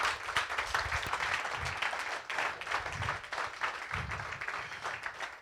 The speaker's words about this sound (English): Est-ce qu'on peut applaudir plus? Oh, can we clap louder? I'm sorry. Louder than that, louder than that.